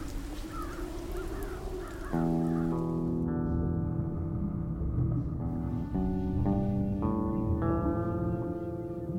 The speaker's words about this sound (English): They're birds. Dumb birds.